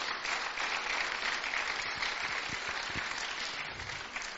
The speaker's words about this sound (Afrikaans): Kom ons klap vir die Here, amen.